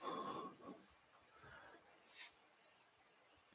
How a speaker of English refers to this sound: Wanted to point out that we were all quiet for a minute and we could literally hear crickets. Oh, that's probably my window. I'm sorry.